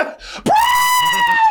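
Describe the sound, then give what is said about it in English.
A single loud, high-pitched scream bursts in abruptly after a brief muffled rustle and holds steady on one shrill, piercing note until the end. “That was the screaming I heard.”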